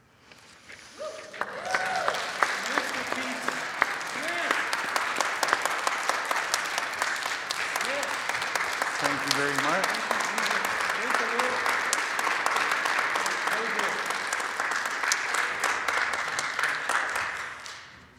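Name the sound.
audience applause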